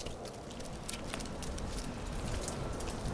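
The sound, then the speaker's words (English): Meltwater from melting snow in spring trickles steadily into drains, a continuous watery rush dotted with scattered drips and splashes, even in level, with no voices. “And I make my way down to the park beside my old elementary school, listening to the sound of melting snow as the water runs into the drains.”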